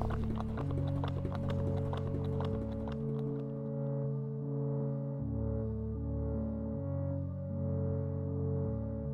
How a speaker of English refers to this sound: It was horses going kind of in the Kentucky Derby, like you're right on the track.